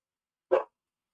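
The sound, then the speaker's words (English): A single short dog bark, sharp, standing alone against silence. “Dog barking.”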